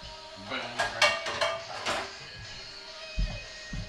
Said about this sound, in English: Chapo is still chopping. Perhaps you can give us a little chop-by-chop analysis, Chapo, while you're chopping.